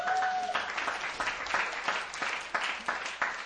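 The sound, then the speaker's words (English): A large group claps steadily together as a clap offering to the Lord, a dense wash of applause with sharp, overlapping hand claps and a few brief cheers or whistles at the start. “Give a clap offering to the Lord right now.”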